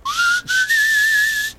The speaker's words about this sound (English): You call that sizzling. That's a bad whistle.